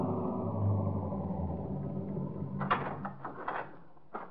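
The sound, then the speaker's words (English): A police car's low engine rumble slows and fades as it rolls to a stop in front of the lodge at Sportsman's Retreat in the Catskills, followed by several sharp clunks, like doors or latches, with no talking. “And 20 minutes later, we were pulling up in front of the lodge.”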